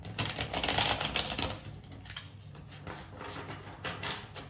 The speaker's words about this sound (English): And as I shuffle the cards, please don't forget to like, comment, subscribe, and share the videos.